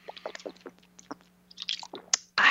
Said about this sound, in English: Now, let me take a sip of the old H2O. Very important on these hydrating days, folks.